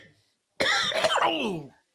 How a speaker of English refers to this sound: I promise you, this is not Corona. I'm coughing from the fat elf Sour Diesel that I can't even pass. I got to smoke it to the face. It's devastating.